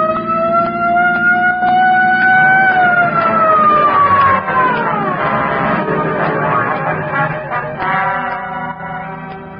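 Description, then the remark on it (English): A loud police patrol car siren wails, holding a high tone before its pitch slides downward, with rumbling engine and traffic noise underneath and no talking. “Just as the not-so-sharp shooter made another try, I picked up just what I was looking for, a game of tag with a police patrol car.”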